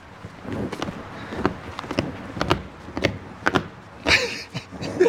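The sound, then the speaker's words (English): Footsteps thud across a wooden walkway in a San Francisco alleyway in an irregular walking rhythm, each step a sharp hollow knock, with a few heavier stomps near the end over a steady breezy background. “So now we're walking on this, if you can hear, a nice wooden base.”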